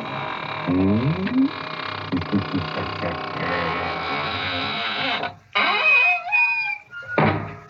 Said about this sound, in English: And now it's time to close the squeaking door, so good night. Pleasant dream.